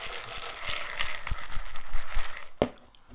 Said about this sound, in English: Drama ensues, and I'm just eating my kettle corn.